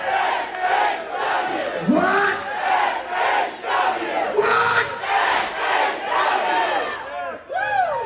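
A large crowd at a Southern Honor Wrestling (SHW) show, on their feet as wrestling legend Raven shows up, cheers and yells continuously, with rising whoops and shouts swelling over a dense roar of many voices, loud throughout.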